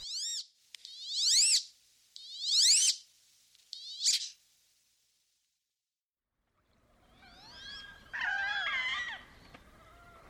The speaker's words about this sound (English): Check to see if it's kind of a small duck. It's not a big mallard. Check for that square head and really small beak. And also for this sound. They kind of squeak and make all kinds of noises. Let's listen to the wood duck.